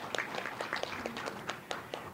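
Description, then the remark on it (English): A scattered round of applause from an audience applauding themselves, with sharp individual claps rising out of a steady bed of crowd clapping. It runs unbroken and at a moderate level, with no voices over it. “Why don't you give yourselves a round of applause there?”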